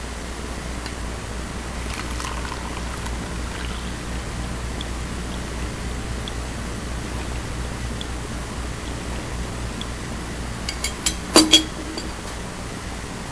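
Liquid holding a black precipitate trickles steadily through filter paper with a soft, even hiss, then a few quick, bright glass clinks ring out near the end. No one speaks.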